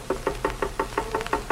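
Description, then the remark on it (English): A rapid, even run of about nine knocks on a dentist's office door, fairly loud, sharp wooden raps coming quickly one after another, with no voices. “Knock on the door.”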